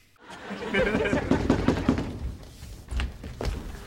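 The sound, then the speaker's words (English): Muffled voices murmur at first, then a few dull, solid knocks land on a door, spaced apart, with some background sound continuing between them; more knocking on the door in a TV scene, with Jefferson at the door. “Anyway, so now we have another scene after Mandy goes to bed on the couch and there's more knocking on the door.”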